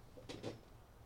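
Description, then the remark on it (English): A door being pushed shut, heard as two quick, soft knocks close together, a latch click followed by a light thud, with no voices. “Do you think you could push that door? Sure. Maybe just shut for just a second?”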